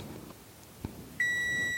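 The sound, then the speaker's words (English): A kitchen timer marking two minutes of simmering syrup lets out a single sustained high electronic beep that starts abruptly and holds steady and loud, after a stretch of quiet low background rumble. “And there's my 2 minutes of simmering.”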